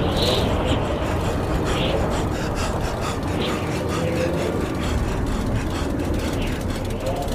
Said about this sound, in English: His escape was blocked by the truck, creeping ever forward.